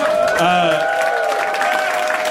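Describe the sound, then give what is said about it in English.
An audience applauds steadily, a dense wash of clapping at an even, loud level, with voices calling out and cheering mixed into it throughout. “Everything sounds horrible when it's followed by applause like that.”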